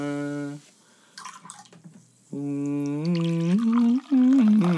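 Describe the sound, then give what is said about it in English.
A watermelon-flavored drink pours into a container, a steady gurgling stream whose pitch climbs as it fills, broken by a brief splashy pause before a second, longer pour. “Just pour it up.”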